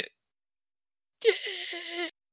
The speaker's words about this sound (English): Yes, that is the sound effect of the 2020 football season. Like a wet fart. Yes, it is. Just like everything else in 2020, this has been a wet fart of a season for a wet fart of a year.